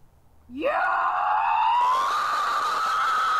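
A loud, sustained scream sound effect played from a soundboard button labeled 'sloth yell' rises sharply in pitch and then holds a long, steady, wailing tone for about three seconds, with no talking over it.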